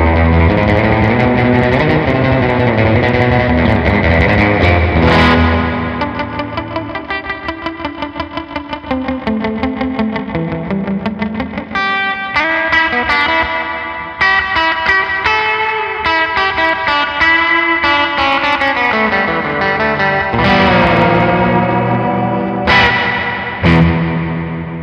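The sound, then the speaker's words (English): An electric guitar runs through a reverb pedal cranked to maximum with boost mode on and the res switch set to the middle, its notes smearing into a loud, lush, continuous wash that swells and sustains for the whole stretch, with no talking. “And this is with the boost mode on to get kind of that maximum reverb, and the res switch set to the middle.”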